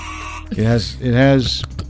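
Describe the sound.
A voice imitates a game show buzzer with two loud, nasal, droning bursts, the second longer than the first, with faint background noise around them.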